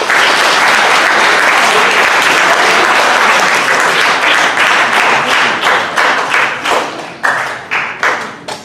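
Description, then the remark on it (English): Loud audience applause fills the room, a dense wash of many hands clapping that gradually thins out, breaking into scattered individual claps before fading near the end. “Yeah, you can clap there. I like that.”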